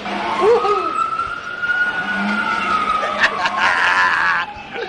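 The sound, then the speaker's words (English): A toy fire truck's electronic siren wails steadily for several seconds, a high sustained tone with a slight waver, with some faint clattering and background noise beneath it. “Wow, it's like a real fire truck.”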